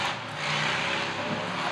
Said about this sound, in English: That was a very loud motorbike. It was a visceral experience of sound, wasn't it?